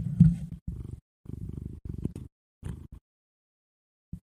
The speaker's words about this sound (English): Can you hear the cat purring? Because the cat is our biggest SMR. It's his little twinkles and the little purrs.